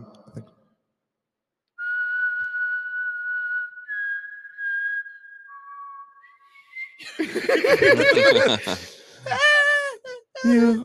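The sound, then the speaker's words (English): A person whistles a short tune of long, held notes that step up and then down in pitch, clear, followed by loud laughter and excited voices. “I want to be that professional whistler that I can like travel the world and just whistle.”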